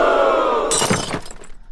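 A steady tonal hum cuts off into a sudden loud smash as a phone breaks, followed by a brief scatter of cracking, rattling fragments that quickly fade. No one speaks.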